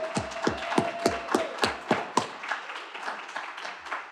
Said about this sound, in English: But let's applaud nice and loud so they can hear us as we welcome home our very own Carmen Tafolla.